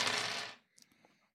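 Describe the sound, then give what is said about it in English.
Six dice rattle loudly in a cup for about half a second, then spill out with a few light, scattered clicks as they tumble and settle. “That is a wits composure roll. Six dice.”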